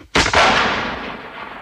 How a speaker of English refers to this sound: Franklin had stood on this rock, fired, and fell back into the pool, using the same gun that had been used in the earlier shootings.